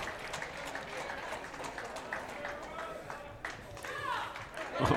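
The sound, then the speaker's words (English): A wrestling crowd chants for the wrestler Thunder Rosa during her match with Athena, over a steady roar of cheering and scattered clapping, the massed voices rising in a brief swell near the end. “And that is just encouraging a Thunder Rosa chant from the crowd.”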